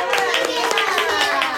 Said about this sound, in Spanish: le damos un aplauso. Lo ha dicho muy bien.